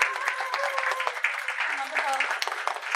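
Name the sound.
round of applause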